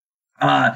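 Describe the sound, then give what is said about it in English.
After a moment of silence, a voice gives one short, throaty little cough, a brief voiced hack like someone imitating a polite cough. “what he says is he's like, shrugs and's like, gives a little cough.”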